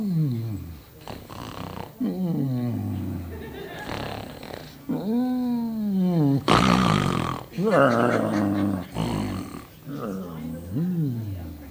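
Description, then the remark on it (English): A person imitates a lion's roar: a run of loud, growling vocal roars that swell and fall in pitch, with one harsh, breathy blast midway through. “And so I always thought about that, and I've always envisioned those lions roaring. And so it goes kind of like this.”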